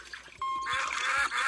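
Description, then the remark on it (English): Water sloshes and splashes in a steady, busy wash of sound in a virtual bathtub game app on a phone or iPad, where tilting the device splashes the water around, preceded by a brief squeaky tone and a few soft low thumps; no one speaks. “and it's like a virtual bathtub, and you can kind of hear it.”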